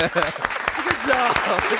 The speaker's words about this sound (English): Good job. Clap it up for this guy. That was a good one.